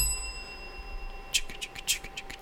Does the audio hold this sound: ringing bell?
yes